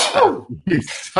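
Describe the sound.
A single sneeze: a voiced, falling build-up that breaks into a sharp, breathy burst of noise, followed by a brief noisy exhale.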